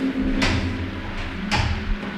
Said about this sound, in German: Da hörten TKKG, wie sich der Riegel bewegte. Nelly Hirsch öffnete die Kellertür.